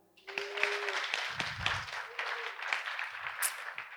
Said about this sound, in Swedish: vi spelar in det här avsnittet på Ekus tullgala i Göteborg inför publik. Kan vi få en applåd?